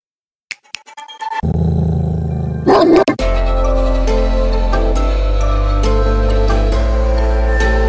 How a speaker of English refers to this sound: Okay. Number one, being attacked by a dog.